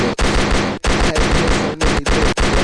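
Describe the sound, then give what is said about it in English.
Dense bursts of loud gunfire, a gunshot sound effect, crackle in rapid succession, separated by a few brief pauses, like a volley of shots with no voices. “Hit, gunshot for T Money.”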